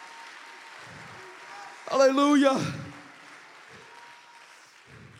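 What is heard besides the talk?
audience clapping hands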